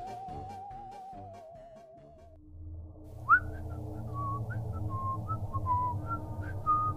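A man whistles a wavering tune, then a string of brighter, higher notes over a steady low background rumble, fairly close and moderately loud, with no talking.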